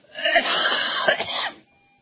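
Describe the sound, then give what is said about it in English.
A single harsh, wet cough with a throaty rasp that dislodges a little snot, loud, lasting about a second and a half before cutting off into silence. “Every time I cough like that, I dislodge some snot.”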